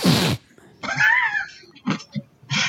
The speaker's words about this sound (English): Is that a sniff or a snort? Well, it was a sniff that's turned into a snort.